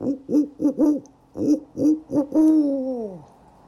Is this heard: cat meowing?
no